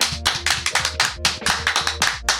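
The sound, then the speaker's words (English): Applause for a man who has just joined, in steady, rhythmic claps, about four per second, sharp and fairly loud, with no voices. The claps are distinct rather than a dense crowd roar. “Applaud this man.”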